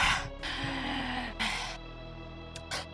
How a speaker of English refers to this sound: I can't do it if you're panting in the background.